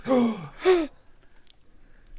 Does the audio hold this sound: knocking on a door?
no